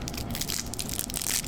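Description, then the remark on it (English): A crinkly, crackling clear plastic wrapper is handled and torn open to unwrap candies that look like big cough drops, a steady stream of bright rustling and small crisp pops with no talking. “So let's go ahead and unwrap these.”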